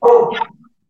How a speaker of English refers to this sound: Oh, I love that the dog answered first.